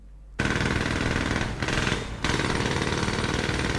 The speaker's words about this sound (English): It's a pneumatic drill, a jackhammer. That's what that is.